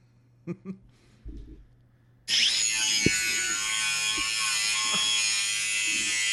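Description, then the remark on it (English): A few soft knocks, then a loud, harsh electric buzzing like a saw or shaver suddenly starts and drones on steadily, a sound effect played from a soundboard app downloaded on a phone. “Did you download a soundboard on your phone?”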